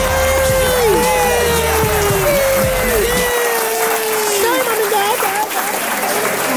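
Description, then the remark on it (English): A crowd applauds and cheers loudly and steadily for a rapper as Man of the Year, a dense wash of clapping mixed with cheers and whoops that holds for the whole stretch. Shouting voices rise and fall through the noise. “Let's give a round of applause for …, the Man of the Year.”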